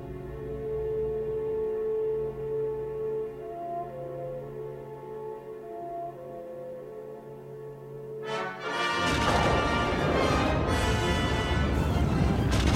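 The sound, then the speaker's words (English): Soft, sustained orchestral tones play for several seconds, then a loud, booming sci-fi space battle explosion as the Death Star is destroyed erupts and keeps roaring with crackling, rumbling intensity until the end. “Look, another explosion. Surely the Death Star can't endure many more.”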